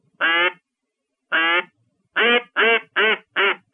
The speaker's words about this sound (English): after hearing you demonstrate the proper way of using a duck call like you just did there